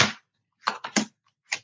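Tarot cards being given a final shuffle: a burst of papery riffling, a pause, then three quick crisp slaps of cards, a short gap and one final snap. No voices are heard.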